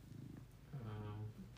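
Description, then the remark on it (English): A cat purrs softly, a low pulsing rumble that runs steadily through the moment with a brief tonal swell partway through. “A nice way to wake up is to have a cat on you.”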